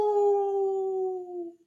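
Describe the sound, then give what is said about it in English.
A person's voice imitates a wolf howl: one long, steady note that sags slightly in pitch before fading out, with no other sounds around it. “Do you like me to do a howl?”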